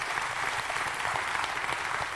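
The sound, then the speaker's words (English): A church audience claps in praise of God during a service, a steady, dense wash of applause, many hands blending into a continuous crackle that holds even in volume throughout. “You can clap for that.”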